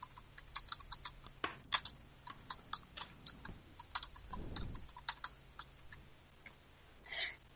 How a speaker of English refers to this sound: Really? Silence from everybody? Sorry, I was typing something. I had an excuse.